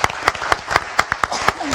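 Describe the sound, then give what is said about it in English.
A small audience applauds the chair of an evening session, with a bed of scattered clapping and one set of sharp, steady claps standing out in a quick, even rhythm. “So a round of applause for our chair tonight.”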